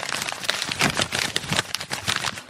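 Dense, continuous crinkling and rustling of a big pile of paper being rummaged through, pushed around and shuffled, with irregular bursts of crackly handling and no voices.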